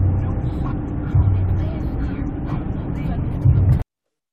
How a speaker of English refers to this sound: 30-degree weather, two people riding motorcycles.